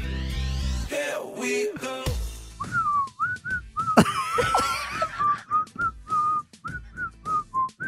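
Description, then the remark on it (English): Someone whistles a tune, a string of short, steady melodic notes with breathy gaps between them, following a brief burst of rising electronic sounds and scuffling noise at the start. “Can you blow my whistle? All right, here we go. Whistle, baby.”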